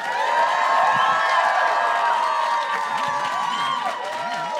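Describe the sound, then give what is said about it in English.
An audience claps and cheers loudly, voting for Tonks to win the November nutties bracket, high excited shouts and whoops layered over a steady wash of applause, holding strong for several seconds before easing slightly at the end. “Now, who thinks that Tonks should win the November nutties bracket? Clap your hands.”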